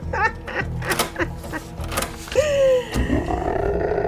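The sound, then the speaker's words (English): Monstrous creatures from the Hells that look and act like dogs roar and snarl in overlapping bursts, building to one loud, sustained growling roar whose pitch bends and falls, then a rougher rumbling snarl trailing on. “They look and act like dogs, but I can assure you, they are not.”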